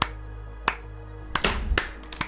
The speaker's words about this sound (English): Lackluster clapping.